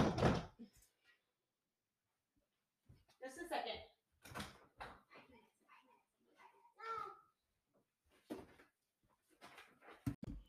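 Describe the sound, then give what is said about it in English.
Sharp, irregular thumps on a door repeat, separated by pauses, as children bang on the door, their voices chattering and calling out between and over the knocks. “Okay, so as I predicted, they did come and bang on the door.”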